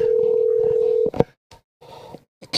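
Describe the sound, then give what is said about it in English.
A steady telephone dial tone hums for about a second, then cuts off with a click, followed by a few short, separated keypad tones as a number is punched in. “Call Laz. Yeah, there you go. Call Laz.”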